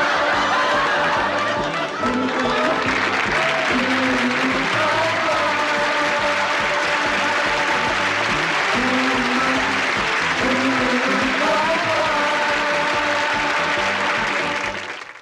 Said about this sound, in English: I like that we kept in, we picked the video with all the laugh track and the clapping and the applause. It just reminds me of what TV used to be like.